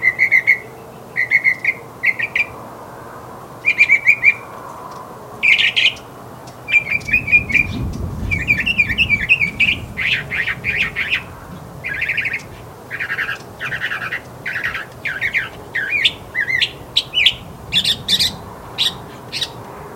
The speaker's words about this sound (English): Do you hear that song? That is the northern mockingbird. The northern mockingbird is a medium-sized, slender songbird with long legs, erect posture,